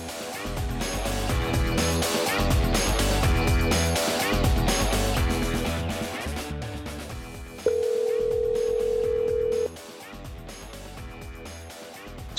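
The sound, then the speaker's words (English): Upbeat music plays, then gives way to a single steady electronic phone ringing tone lasting about two seconds, loud, as a call to Round Rock, Texas connects. No one speaks. “So now let's call my dear friend Taylor Estes in Round Rock”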